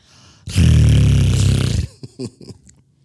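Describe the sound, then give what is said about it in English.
A person voices a loud, rough growl lasting over a second, with a deep raspy rumble. A few short, softer vocal bursts follow right after. “He told me he wanted me to growl.”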